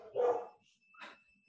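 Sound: dogs barking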